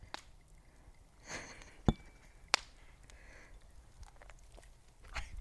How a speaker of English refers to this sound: The ice cubes? Yeah. Chomping. Get the ice cube, Zuko. What is that? Get the ice cube.